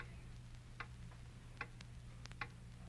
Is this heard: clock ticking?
yes